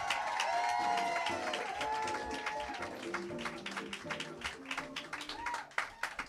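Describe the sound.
An audience claps steadily while people cheer and whoop, high excited voices rising over a dense wash of applause that thins into scattered claps toward the end.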